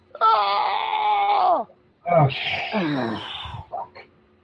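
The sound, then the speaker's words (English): A loud, drawn-out scream that trails off as its pitch drops, followed after a brief pause by a second, rougher anguished scream that fades into a short, faint final cry. “You definitely hear a scream now.”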